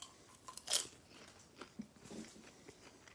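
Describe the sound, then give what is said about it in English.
Someone chewing crunchy microwave popcorn: one sharp, bright crunch followed by a few softer, irregular crunches and mouth sounds, with no talking. “It's still kind of that dry microwave popcorn that you're used to, but it has a fullness, a kind of a richness to it.”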